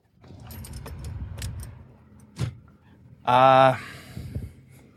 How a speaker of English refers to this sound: We're in the car. We are in the car and we are headed home. That was a movie that we just saw. Wow. Let's start the car and...